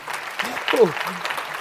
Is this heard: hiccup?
no